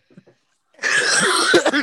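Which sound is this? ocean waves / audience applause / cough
cough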